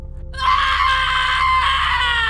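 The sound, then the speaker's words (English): A woman lets out a loud, sustained, high-pitched scream in an apartment bedroom, starting abruptly after a brief low hum and holding for about two seconds, piercing. “On hearing my wife scream, I immediately rushed to the place and took my son out of the bedroom.”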